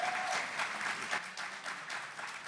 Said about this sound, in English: Can we get a round of applause for these gentlemen?